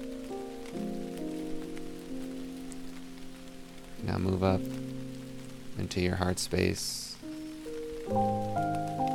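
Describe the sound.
Steady rain patters on a surface throughout, soft and continuous beneath sustained, gentle musical tones, while a calm voice speaks briefly over it.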